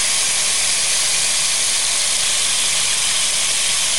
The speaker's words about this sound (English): That sounds like Florida. That's rain. That was rain. That's how hard it was raining at my house.